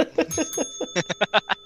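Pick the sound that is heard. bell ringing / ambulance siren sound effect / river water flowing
bell ringing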